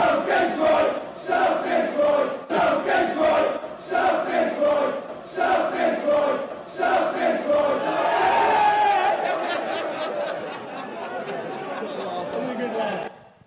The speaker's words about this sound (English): In 13 seconds, watch what this soccer player is able to do with this crowd that's harassing him. Check this out.